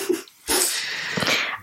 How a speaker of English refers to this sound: Sorry if you can hear Luna snoring right now. She's absolutely out. I think it's really cute that she, like, moved her head closer to me.